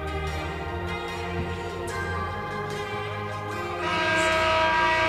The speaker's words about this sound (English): Horn sounds and both teams will come back out.